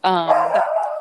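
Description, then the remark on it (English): A dog lets out one drawn-out, loud bark that slides into a howling whine, lasting about a second with no other sounds around it. “Hi, puppies.”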